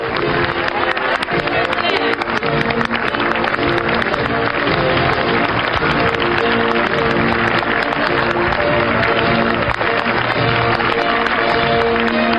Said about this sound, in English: Hail to the Chief played for Barack Obama.